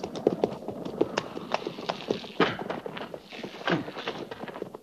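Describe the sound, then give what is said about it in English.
Several horses of an army patrol clip-clop on hard ground in a loose, overlapping rhythm, slowing and scattering as the patrol halts, with faint scuffs and thumps mixed in. “get that horse and put him with the pack mules”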